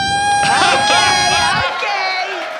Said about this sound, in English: So for people listening, that was just me blowing into the reed itself. You can buzz your lips and make a sound from just the reed. That's an interesting thing about the bassoon and other double reed instruments.